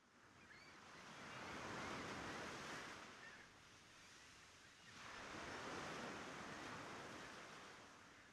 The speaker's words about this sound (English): The waves are getting closer. Yeah, tide's coming in now.